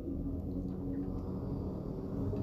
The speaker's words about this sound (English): hear this bus going by? Disrespectful.